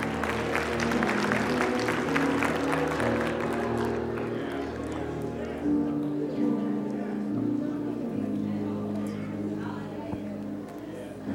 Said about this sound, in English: Come on, clap your hands as you take your seat.